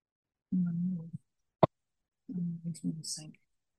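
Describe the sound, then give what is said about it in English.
A single sharp click from apples being turned in a food mill, pushing them down so more apple pieces fit, lands in a gap between two stretches of low voices. It is brief but loud. “that clicking is him turning the apples so he can get more apples into the mill.”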